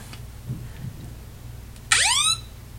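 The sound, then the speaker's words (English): A phone's emergency SOS alarm, set off by pressing five times, blares in one sudden loud burst, a harsh rising siren-like wail with stacked harmonics lasting under half a second, after a few faint thumps. “that calls the cops if you do that too many times”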